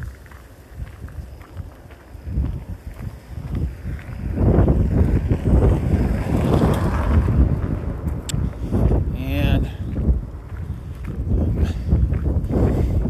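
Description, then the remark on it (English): Strong wind buffets the microphone in loud, gusty low rumbles, with footsteps and rustling movement faintly beneath as someone walks up a big hill outdoors into the wind in sunshine. “I'm going to take you up the big hill into the wind for my walk today.”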